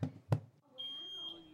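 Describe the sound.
A smoke detector alarm sounds a steady, shrill high-pitched beep lasting about a second, preceded by two sharp knocks, with faint murmuring voices underneath.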